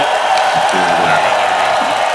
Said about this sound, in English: So random claps, random cheering, you know. That's right. We get an audience right now.